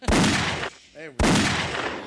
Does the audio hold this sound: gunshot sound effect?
yes